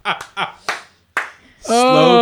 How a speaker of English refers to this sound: Slow clap, sir.